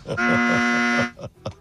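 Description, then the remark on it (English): A loud, harsh game show wrong-answer buzzer blares in one sustained blast of about a second, followed by a couple of short, quieter bursts. “Those buzzers are the only thing bringing me joy right now.”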